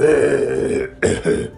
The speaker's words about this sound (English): Oh, are you not feeling well? Oh, I have a cough sometimes, and...